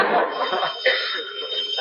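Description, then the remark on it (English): A telephone rings with a continuous, rattling bell trill that holds steady for about two seconds at a fairly loud level, with a bright, tinny, band-limited tone. “Oh, there's the phone, Aunt Aggie. I'll answer it.”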